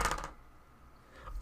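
Dice clatter across a hard tabletop in a quick rattling burst, followed by a second shorter tumble about a second later, fairly quiet with no voices; a roll with advantage.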